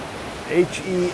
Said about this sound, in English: 7:11 a.m. Saturday morning, July 25th, 2020. Coming to you live from the ocean's edge. If you're not living on the edge, you are taking up too much space. Anyways, at the beach with my dog,